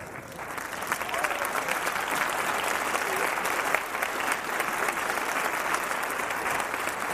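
A crowd claps steadily in sustained applause, a dense, even patter of many hands that holds at a fairly loud level for several seconds without anyone speaking.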